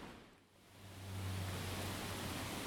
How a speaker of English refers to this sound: Nice windy sounds, eh? Hope you can hear me okay.